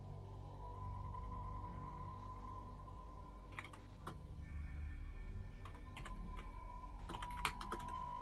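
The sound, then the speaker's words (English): Quick, light clicks of a woman typing a direct message on a computer keyboard, coming in short irregular bursts over a steady low hum, soft, with no one speaking. “Well, while she's typing, can I use the past and future move I have?”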